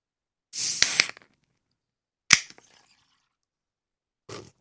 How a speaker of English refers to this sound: But while I wait for that, let's open up this Guinness.